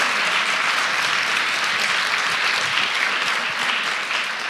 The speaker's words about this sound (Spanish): Si ustedes lo creen, dale un aplauso fuerte, Señor.